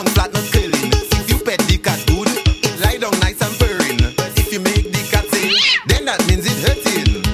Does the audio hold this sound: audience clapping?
no